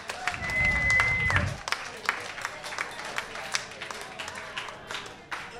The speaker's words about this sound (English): But you guys got second place, so come and get your prizes. And give them all a nice round of applause here tonight.